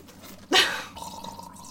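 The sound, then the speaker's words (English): A single wet, airy slurp of bitter coffee being sipped, loud and brief, fading into a faint liquid hiss and a soft gurgle afterward, with no talking. “So I'm going to give you an ASMR sip.”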